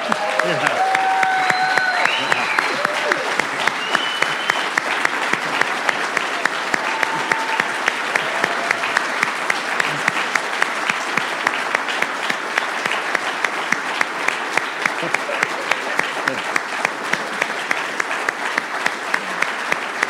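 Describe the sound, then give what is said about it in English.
Sustained audience applause, a dense wash of many hands clapping steadily for about twenty seconds, with a few whoops and brief cheers rising early on. “Do you think that they might be deserving of a hand clap?”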